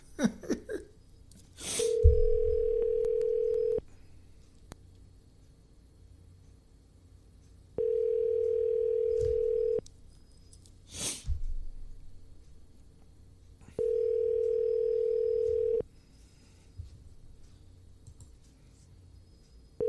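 An outgoing phone call rings three times, each steady two-second ringback tone followed by a pause, with faint clicks and handling noises between rings and no one picking up.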